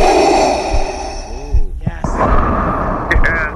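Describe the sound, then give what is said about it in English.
A voice imitates Darth Vader's heavy, rasping mechanical respirator breathing, drawing loud hissing breaths in and out with a harsh, hollow rattle and brief gasping catches. “That's Darth Vader right there. I think I was snoring like that the other night.”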